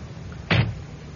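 A car door shuts with one solid thump, a short burst over quiet background hum, with no voices.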